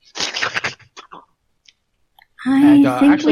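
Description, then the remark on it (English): Someone imitates kobolds slurping and licking their lips: a burst of wet, noisy slurps, a few scattered lip clicks, then a longer voiced, gurgling slurp. “So mostly slurping and licking of lips, but you don't actually hear the words.”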